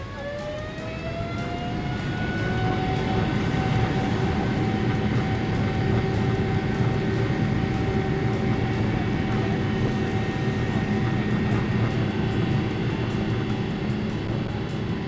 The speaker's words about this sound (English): The captain of the Airbus 321 pushed the throttle to the maximum power level, and the two engines started to roar noticeably.